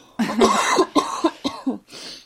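A loud fit of coughing: one long harsh cough followed by several quick, sharp coughs in a row, ending with a softer, breathy exhale.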